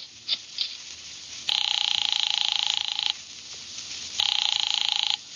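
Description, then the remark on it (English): A few quick dialing clicks as an office phone at a document research laboratory on Vanderbilt is dialed to call Nero Wolfe, then the telephone rings twice in long, buzzy trilling bursts separated by a short pause, clear, with no one speaking. “I drove down to the document research laboratory on Vanderbilt and got such a shock that I grabbed the office phone and dialed Wolfe at once.”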